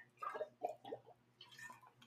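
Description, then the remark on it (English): Several short, wet slurping sips of water, fairly quiet, arriving in quick bursts over about two seconds with a faint steady hum underneath. “So, I should have waited to press record because now I'm going to sip some water.”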